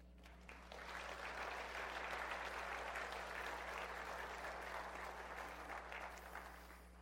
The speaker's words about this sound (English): You may clap for God.